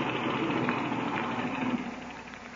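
An airplane engine idles with a steady, dense drone after the plane is taxied into position past a tree trunk, holding evenly throughout and easing only slightly near the end without stopping. No voices are heard.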